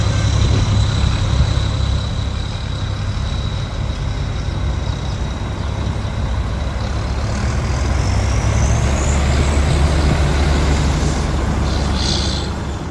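The heavy engines of 12 loaded buses of migrants heading north from Panama rumble loudly and steadily, a thin high whine drifting and rising partway through, with a short hiss near the end like an air brake releasing.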